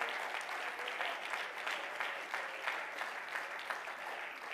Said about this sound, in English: Oh, somebody say hallelujah. Clap your hands and praise Him again tonight.